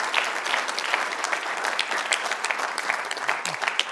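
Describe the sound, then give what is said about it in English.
A church audience claps together to give God praise in a dense, steady burst of applause, many overlapping hand claps forming a continuous bright wash that holds evenly for several seconds with no talking. “We should clap and give God praise.”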